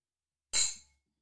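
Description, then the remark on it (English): A single bright clink of glasses touching in a toast, a sharp high-pitched tap that rings briefly and fades out within half a second, with silence before and after. “Fucking clinks all around.”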